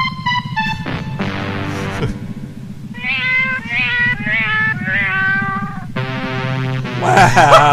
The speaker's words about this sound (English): the cat is singing the Meow Mix jingle to the spaceship that's repeating it back